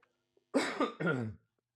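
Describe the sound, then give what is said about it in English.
Two quick, harsh coughs in close succession, loud, with nothing else around them. “I'm just going to say, pardon me, please, through every cough.”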